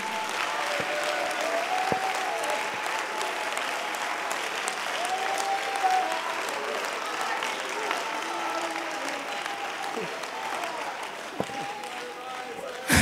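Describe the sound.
A church audience claps steadily for several seconds during a sermon, a dense wash of many hands with scattered voices and shouts mixed in beneath the applause.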